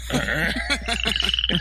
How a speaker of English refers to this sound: And then by like 4 in the morning, they're having sex. So that their croaks have become one croak. Where it goes, rrr, rrr. At the end of the night, they're like, rrr, rrr.